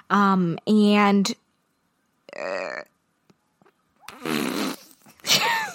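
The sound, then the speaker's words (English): Someone blows a string of loud raspberry fart noises with their mouth: two quick buzzy bursts together, then three more spaced apart by short silences. “Sometimes whenever I have a brain fart, I make fart noises, which now that I'm saying that out loud, I'm really thinking maybe I shouldn't keep it in.”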